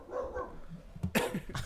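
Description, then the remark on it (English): A person vocally imitates a gorilla by barking: after a quieter, murmuring start, a few sharp, harsh bark-like bursts come in quick succession, fairly loud. “Gorillas don't bark. Yeah, but still the same idea because they're animals.”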